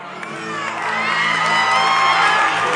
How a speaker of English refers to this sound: Everyone shouting.